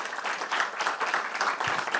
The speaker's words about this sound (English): Round of applause.